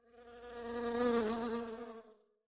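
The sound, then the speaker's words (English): A droning buzz of honey bees near a hive swells in loudness over about a second, wavers slightly in pitch, then fades away, with no voices present. “But now the worker bees, they are really, really protective of the hive.”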